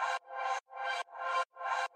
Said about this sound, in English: Yeah, so this is a ghostly vocal from Splice, and then I put a bunch of reverb on it and just took the reverb tail and looped it. In fact, yeah, here it is. And then the same Serum effects on.